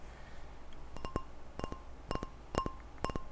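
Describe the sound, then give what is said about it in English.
A wine glass clinks again and again as a toast is made, with a short bright ring after each tap, about ten light strikes in loose pairs over a quiet background. “You hear that? That's my wine glass.”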